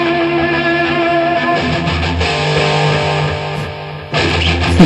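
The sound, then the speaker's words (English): Loud, dense rock-style wrestling entrance music, the wrestler Crush's theme, with distorted guitar and sustained bass notes, playing continuously at full volume with a sharp section change near the end; no one speaks over it. “Here's Crush's theme. It's like the same thing.”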